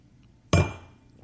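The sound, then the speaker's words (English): A single sharp clink of a wine glass being handled as someone takes a sip of wine, a bright ringing tap that fades over about half a second, with quiet background and no talking. “Oops, not before a sip of wine.”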